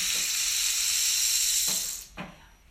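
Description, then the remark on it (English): An upended cactus rainstick's grit or dry seeds trickle down in a steady, bright hiss that lasts about two seconds, with a few soft taps, before thinning out and fading away. “Who cares if the music that transpires is the fall of grit or dry seeds through a cactus?”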